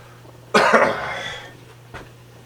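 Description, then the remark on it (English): A loud, rasping throat clearing by a person with allergies and bad sinuses, lasting about a second, then a short fainter catch a moment later, with no talking around it. “It's hard not to clear my throat so much today because of the allergies and the sinus is really bad here right now.”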